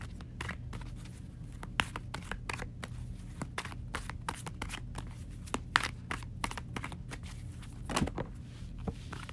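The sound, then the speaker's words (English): A deck of cards being shuffled for a card reading on water signs' money and career: a steady run of quick, crisp papery snaps and riffles, with a few louder flicks, over a low steady hum and no talking. “All right, so let's get some cards here.”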